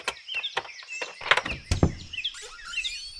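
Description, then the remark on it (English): A series of heavy, irregular knocks as Winnie the Pooh bangs the door knocker on Owl's door several times, while birds chirp and twitter steadily in the background. “Then, to make quite sure, he knocked and pulled the knocker, and he pulled and knocked the bell rope, and he called out in a very loud voice as well.”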